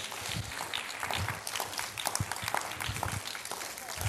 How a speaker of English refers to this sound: Somebody clap your hands for a moment and magnify the Lord.